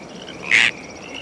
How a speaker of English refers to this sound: They're peepers. Tree frogs.